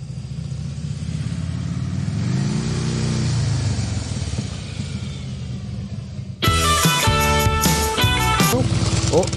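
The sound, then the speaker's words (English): A motorcycle engine rumbles and revs up, its pitch climbing and falling over several seconds, before loud music abruptly cuts in and takes over. “I'm sorry, I killed the motorcycle.”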